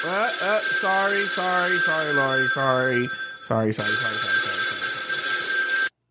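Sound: telephone bell ringing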